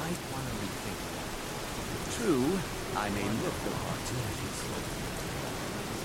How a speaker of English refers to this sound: And it is really raining really badly. I can barely see anything. All right, so it's pouring rain.